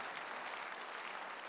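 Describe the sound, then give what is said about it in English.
An audience claps for the Lord steadily and loudly during a church service, a dense, continuous wash of many hands with no pauses or voices standing out. “Somebody give the Lord a mighty clap of it.”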